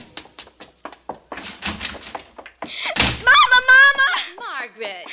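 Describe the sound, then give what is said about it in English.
Hurried footsteps patter up as a girl runs into her house before the door slams shut with a single loud bang, followed immediately by the girl calling out to her mother in a raised voice. “haven't I told you not to slam the door?”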